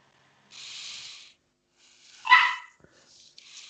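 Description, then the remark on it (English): A single sharp dog bark rings out clearly, sandwiched between soft breathy hissing noises before and after, with no one talking. “You were brought in here to stop barking.”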